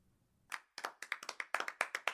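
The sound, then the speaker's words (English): A few people at a convention clap politely: a short run of about a dozen crisp, evenly spaced claps that start after a brief quiet moment, with no talking. “Jim Kepner looks around at all the people sitting, some of them in stunned silence, some politely clapping.”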